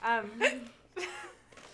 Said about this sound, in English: Do you want us to pause and we can discuss this later when your hiccups are gone?